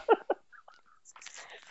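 Someone sips water: two quick, wet swallowing gulps, then a few faint mouth clicks and a soft breathy rustle trailing off.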